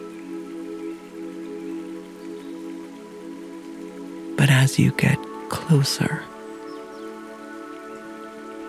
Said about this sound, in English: you notice the faint sound of the water burbling under the ice.